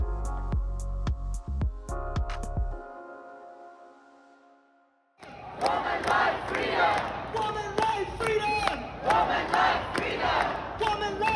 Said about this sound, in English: A crowd cheered when her plane landed, chanting, "Elnaz is a heroine."